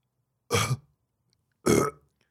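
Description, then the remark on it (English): Two short, forced burps, one after the other with a pause between, fairly loud, sounding like someone gulping air and pushing out a burp deliberately in an attempt to burp on command. “I can hear you pre-burping. You're not doing it right.”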